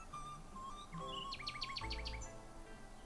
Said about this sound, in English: Then the nightingale began to sing.